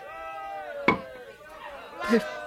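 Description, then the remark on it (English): A soldier hammers a metal spike through Jesus' feet into a wooden cross, two sharp, ringing strikes about a second and a half apart, over steady groaning voices and a murmur of people. “They've driven the spike through his feet and into the cross.”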